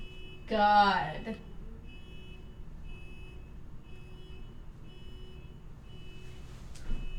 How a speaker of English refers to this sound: What is that sound? What is it? I can't even describe what it sounds like. Someone fucking car alarm.